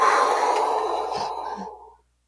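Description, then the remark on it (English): A single loud, breathy gasp, a sharp airy intake that starts at full force and trails off over about two seconds, with no talking. “I literally gasped.”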